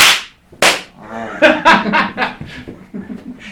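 Two sharp, loud hand claps land about half a second apart, an attempted sync clap for audio alignment that misses being together, followed by people chuckling and laughing.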